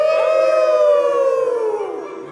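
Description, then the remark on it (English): A crowd of voices joins in during a song, imitating their saddest dog howls together: a long, mournful, sustained wavering tone that slowly slides downward in pitch and fades over a couple of seconds. “Actually, can I hear everyone's saddest dog howls? Let's hear it.”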